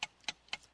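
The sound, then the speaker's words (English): A game timer clock ticks steadily, four crisp, bright ticks spaced about a quarter second apart, fairly quiet with nothing else around them. “Start the clock now.”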